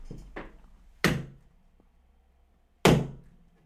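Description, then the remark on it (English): A few dull, heavy thuds like a head knocking against a wall: two soft knocks at the start, then two loud impacts about two seconds apart, each with a short ringing decay. No talking. “So let me just go and bang my head against a brick wall for the 832nd time.”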